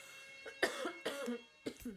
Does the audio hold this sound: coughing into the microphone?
yes